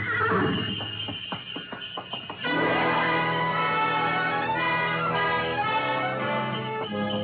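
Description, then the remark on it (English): A horse-drawn sleigh gliding out of a station over snow, its runners squeaking: a run of sharp, rhythmic hoof clops and creaks, then a steady, bright jangle of bells ringing continuously over the soft pad of hooves, with no voices. “We glided out of the station, runners squeaking on snow, the soft pad of hooves, and the jangle of Mary Bell.”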